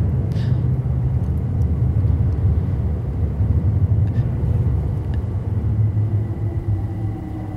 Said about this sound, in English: The train is beneath our feet. So that's the overground line that I was talking about that goes through there now. It used to be the East London line. That's exactly right, yeah. And on this big canvas here... Oh, here's another train.